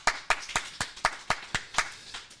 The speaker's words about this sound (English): That was a great round of applause. Way better than last week.